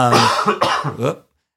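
A man coughs and clears his throat in a few rough, raspy bursts, close to the microphone, with no talking, before it falls silent.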